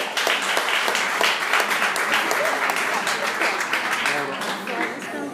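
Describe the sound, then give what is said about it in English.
A crowd applauds steadily, dense overlapping clapping filling the whole stretch at a strong, even level, with some voices mixed into the clapping. “Oh no! I was going to clap too”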